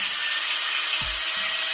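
A power drill runs loud and steady throughout, a harsh, hissing high-pitched whir with a faint low thump partway through. No one speaks.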